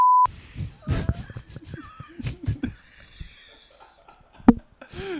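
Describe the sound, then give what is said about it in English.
A short, loud steady censor beep sounds right at the start, followed by several people talking and reacting over one another. “That's gonna get a beep.”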